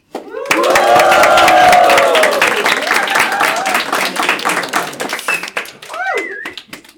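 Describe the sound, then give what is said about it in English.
A burst of live audience clapping, dense and steady for several seconds with whooping voices riding over it early on, then thinning out and fading, with a brief vocal squeal near the end. “So I would like to thank our listeners for tuning in to this Dismissed episode, and I would like to get some noise from the crowd.”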